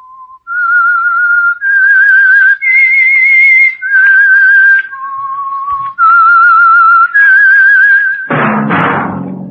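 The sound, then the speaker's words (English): A clear whistled theme melody of sustained notes stepping up and down in pitch, played alone, ending with a brief burst of dense, lower-pitched noise. “That whistle is your signal for the Signal Oil Program, The Whistler.”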